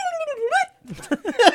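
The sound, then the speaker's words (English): A voice imitates a violin with whiny, sliding tones: one long wavering note that dips and rises, then after a short pause a burst of quick, squeaky swooping notes. “That was my violin noise.”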